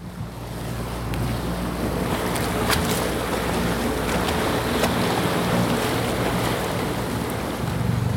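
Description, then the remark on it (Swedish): Steady wind and lapping water fill the scene as a kayak is paddled toward the shore of a small, high, dome-shaped island with a beach, with a few sharp paddle splashes cutting through the watery wash. “Så, då ska vi ta och smyga i land här på den här fantastiskt kupolliknande lilla men höga ön.”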